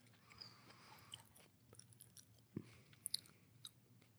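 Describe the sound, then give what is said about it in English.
Close-up chewing with wet, crunchy bites and smacking mouth sounds, irregular over a few seconds, with a couple of sharper crisp clicks standing out. No one talks. “I'm going to let you finish chewing that, though. put the mic close so we can hear that scrumptious.”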